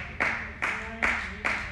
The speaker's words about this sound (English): Two claps, thank you, Jesus. That's better than the first round. I started with one, and I have. Now we're up to two.